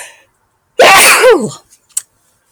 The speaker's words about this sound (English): I may sneeze here. Thank you. There's another.